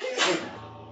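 A single sharp sneeze bursts out, a brief breathy explosion that quickly fades into a quiet hum.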